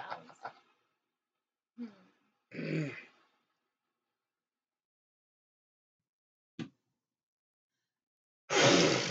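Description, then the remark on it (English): A few short breathy bursts and a voiced, gusty huff, then a loud, harsh noisy blast at the end, like a sneeze, with quiet gaps between and no talking. “Bless you. Bless me.”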